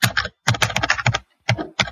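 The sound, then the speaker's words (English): Rapid, clattering keystrokes on a keypad come in quick flurries with short pauses between them, the clicks sharp and fairly loud, with no voices. “Melon thought about just mashing the keypad for a little while, and then he decided to go the route of cool, calm, and collected.”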